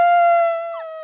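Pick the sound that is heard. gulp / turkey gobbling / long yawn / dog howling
dog howling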